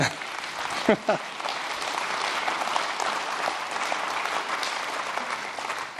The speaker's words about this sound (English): The reason why people would clap at that moment is they are very excited for everyone that raised their hand and experienced Jesus Christ for the first time.